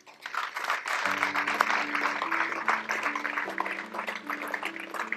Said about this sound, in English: I want you to look around at the people with their hands raised. It's not a lot of people. Could you applaud them?